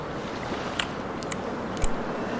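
Chewing on a mouthful of shish kebab: a few short, wet crunches and clicks scattered across a couple of seconds over a steady hiss, with no talking.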